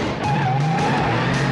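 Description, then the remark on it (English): A company car revs hard and pulls away with its tires squealing and skidding, a loud, continuous screech over the engine roar lasting a second or two. “I can drive this baby out of here right now.”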